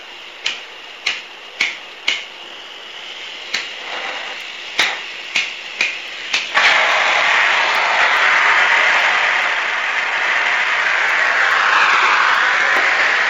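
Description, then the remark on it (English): A quick series of sharp igniter clicks, then a blowtorch flame catches and settles into a loud, steady roaring hiss that carries on without a break as it heats one end of a pipe, to be slid over a bottle to form a bell-shaped end. “So lighting up torch land here.”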